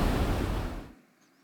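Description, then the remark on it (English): A loud, roaring rush of crashing ocean waves fills the first second, then cuts off abruptly into near silence. “The arm of the Lord is coming and its waves are rising.”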